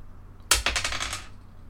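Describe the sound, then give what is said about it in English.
Red dice clatter across a hard surface in a quick, rattling burst of tightly packed clicks, fairly loud, lasting under a second before settling into quiet. No one speaks. “That is the red dice.”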